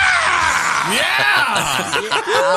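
Democratic presidential candidate Howard Dean lets out a loud, strained yell at a rally, rising and falling in pitch, ringing over the steady roar of a large cheering crowd.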